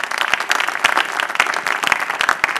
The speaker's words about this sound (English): Let's receive him with a round of applause.